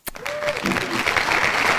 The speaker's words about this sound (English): Applause for LeVar, man. He got his son to the NBA.